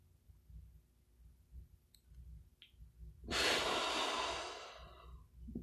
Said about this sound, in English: Okay, last one. Really anchor in. Deep breath in.